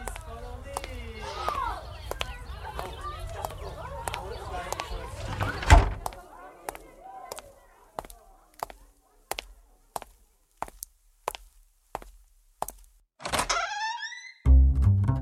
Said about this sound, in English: Someone's knocking on the front door, but I got my hands full. Can you get it for me?